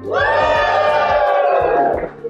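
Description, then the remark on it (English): A large live audience at the University of Dallas roars with loud, sustained cheering and shouting, with some booing, for about two seconds, many voices blending into one wall of sound before it drops off abruptly. “this is a very special live episode of the Pillar Podcast at the University of Dallas, where we have a big and enthusiastic crowd who are going to say things now about how excited they are to be here.”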